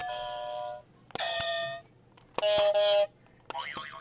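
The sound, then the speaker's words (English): Four different electronic quiz game buzzers are rung one after another close to the microphone for practice, each a loud, steady tone lasting under a second, with the last one warbling up and down. “Do you want to ring your buzzers into the close to the mic so we can practice?”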